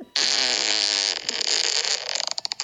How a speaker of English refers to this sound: Squishy. Here comes a squishy fart.